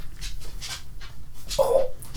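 A dog pants in quick, rhythmic breathy puffs, then lets out a short, high whimper before the panting resumes. No one speaks.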